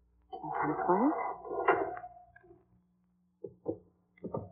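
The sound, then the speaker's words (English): A heavy mausoleum door in a cemetery creaks open in a long, groaning sweep lasting about two seconds, followed by a few separate hollow knocks and clunks. “Now, this mausoleum door... it isn't.”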